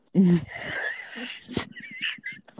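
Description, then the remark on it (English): A woman's single sharp sneeze bursts out after a drawn-out, wheezy voiced build-up, followed by a few quick, breathy gasps and sniffles. “And now she got the kinky sneezes.”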